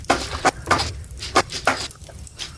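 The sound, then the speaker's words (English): Gold coins pour out of a bag of holding onto a bed in a loud, irregular run of metallic clinks and jingles, arriving in several bright bursts over a soft, rumbling background, with no voices. “Close the door and take all the gold out of my bag of holding.”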